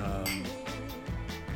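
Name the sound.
glasses clinking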